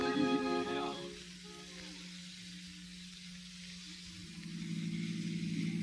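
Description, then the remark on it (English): A car engine starts outside with a brief harmonic whine, then settles into a steady low running drone under hiss, growing louder near the end as the car pulls away. “Come on, folks, the car's outside. Well, let's hop in and get going.”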